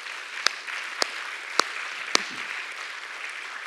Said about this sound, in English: Someone clap your hands to the Lord this morning.